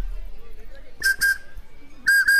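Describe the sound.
A person whistles two quick pairs of short, steady, fairly loud notes, separated by a brief pause, over a faint low background murmur.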